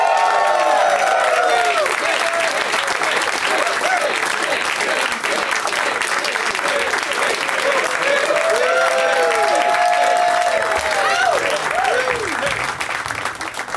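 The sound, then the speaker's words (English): Sustained loud applause from a large crowd as guests Griffin Newman, Ross Marquand, Todd Glass and Geoff Tate are introduced, steady dense clapping throughout with whoops and cheers rising above it, several excited shouting voices arcing up and down in pitch before it tapers slightly at the end. “Please give it up for Griffin Newman, Ross Marquand, Todd Glass, and Geoff Tate.”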